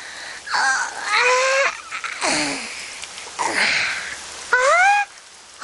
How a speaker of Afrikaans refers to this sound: Hoi, wanneer dit so lekker reën, beteken dit ongelukkig dat die vloer een gouer vuil word.